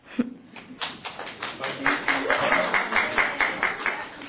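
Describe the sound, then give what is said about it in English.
Steady, rhythmic clapping from a few people at a board meeting after a public speaker, starting sparse and quickly settling into an even beat of sharp claps that continues for several seconds. “We don't do applause, we don't cheer, we don't make sounds.”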